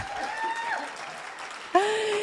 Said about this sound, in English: come on, she's going to get a round of applause.